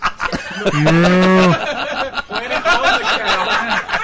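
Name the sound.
cow mooing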